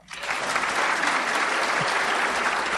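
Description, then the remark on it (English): A crowd breaks into steady applause, many hands clapping together in a dense, even wash of sound that starts abruptly and holds at a constant level throughout; a live audience applauding to vote on which claim is fiction. “So who thinks landfill is fiction? Quickly, applaud.”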